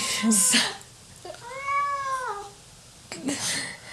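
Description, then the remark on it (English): A single clear, drawn-out meow from Bella the cat, rising then falling, fairly loud, with brief rustling or handling noises just before and after it as the cat is set down. “I'm gonna set the cat down.”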